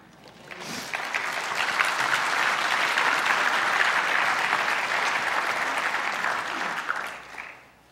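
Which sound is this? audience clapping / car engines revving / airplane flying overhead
audience clapping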